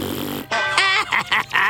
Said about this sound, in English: I'm gonna attack you with my stinky fart.